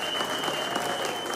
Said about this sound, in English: So if your wife takes care of your kids, give her a round of applause, man.